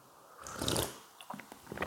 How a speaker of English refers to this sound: I'm going to start off with a little ASMR slurping, if you don't mind. So here we go.